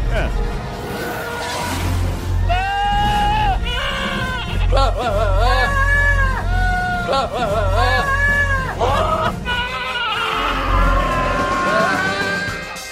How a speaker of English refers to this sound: Star Wars with screaming goats.